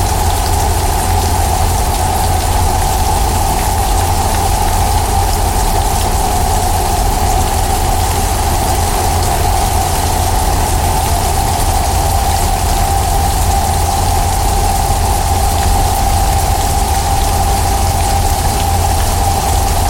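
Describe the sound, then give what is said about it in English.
Steady, continuous rainfall hisses evenly throughout, with a low constant rumble underneath and no voices or pauses, like a sustained downpour. “First, we'll just chill with the rain.”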